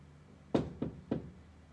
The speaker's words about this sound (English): And so she knocks on the next door.